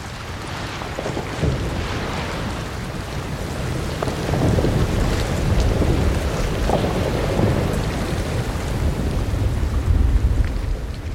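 Melting Antarctic icebergs recorded underwater in Antarctica by sound recordist Mark Michel: a continuous fizzing crackle of countless tiny pops and clicks over a deep, steady rumble, staying fairly loud and even throughout, with no voices.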